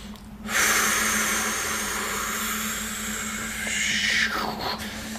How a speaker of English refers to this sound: And it all comes from the diaphragm, breathing correctly.